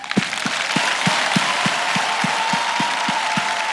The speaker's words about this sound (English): I want to believe your heart is the one clapping. Who is clapping there? Your heart. Let us say the sound of your heart.